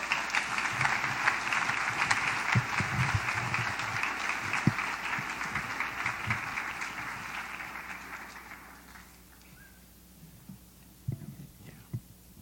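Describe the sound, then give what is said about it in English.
People at a morning worship service applaud a speaker in appreciation, a dense wash of clapping for several seconds that gradually fades out, leaving a few faint thumps and rustles. “welcome Dr. Gaede with a round of applause of appreciation”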